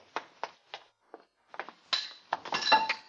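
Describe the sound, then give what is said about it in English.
A thrown object strikes metal pipes up above, missing a window: several separate sharp knocks spaced out, then a louder burst of clanging, rattling impacts with a brief high metallic ring. No voices. “I hit the pipes up above instead of the window.”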